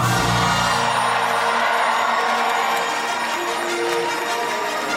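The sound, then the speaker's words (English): A large audience at Star Wars Celebration whoops and cheers loudly and without pause as Lucasfilm president Kathleen Kennedy is introduced, a dense wall of excited voices with loud music playing underneath throughout. “I hear a lot of whooping, a lot of cheering.”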